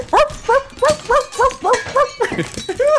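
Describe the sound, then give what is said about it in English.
A person's voice imitates the excited dog Cider, which goes wild and runs around the house when someone pounds on the ground, letting out a rapid, steady string of about eight high yapping barks over three seconds, loud. “No, they pound on the ground, and when you pound on the ground, Cider the dog just goes ape shit, just starts running around the house and going.”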